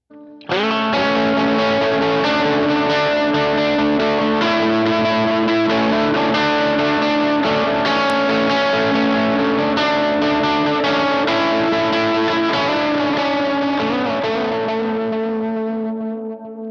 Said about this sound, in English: Likewise, we can turn off all of the drive pedals and simply use my 6-band MXR EQ to boost the front of the Geneva into a great amp-style distortion.